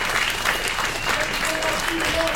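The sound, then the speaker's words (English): An audience claps steadily for Anthony Law, a dense, sustained patter of many hands at an even loudness throughout, with faint voices mixed into the applause. “And I'm going to round of applause for Anthony Law, everybody.”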